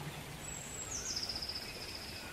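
gentle rain falling

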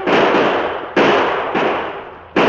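gunshots

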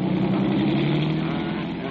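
police car accelerating away

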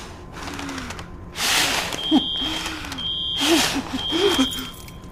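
fire alarm beeping

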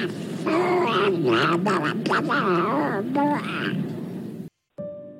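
duck quacking sound effect

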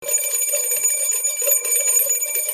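two bell rings

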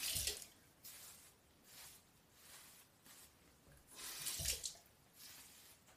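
water running

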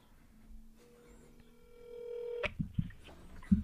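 telephone dialing tones

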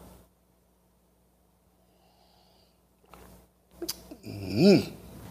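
sipping coffee

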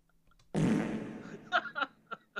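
fart

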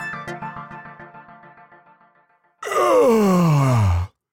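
human yawn

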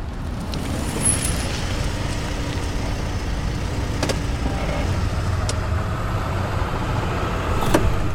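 car pulling up

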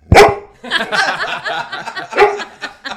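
dog barking

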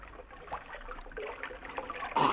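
drinking water

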